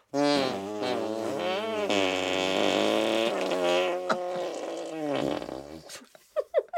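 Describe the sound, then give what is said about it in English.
A long run of loud, buzzy arm farts with wavering, sliding pitch, several overlapping in a continuous blare, then trailing off into a few short sputtering pops. No talking. “We can make a symphony of musical arm farts.”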